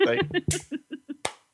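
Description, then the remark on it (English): A voice hums a short run of rhythmic syllables, punctuated by two sharp hand claps landing off the beat, imitating a song's offbeat clapping pattern. “Like the offbeat clapping.”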